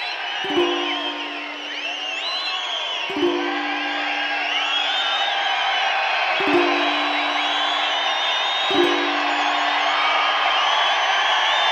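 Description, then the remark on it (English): A large crowd whistles along with a song, many wavering high whistles overlapping in a loud, continuous wash of cheering. Low sustained notes sound beneath at a few spaced intervals. “We're all whistling.”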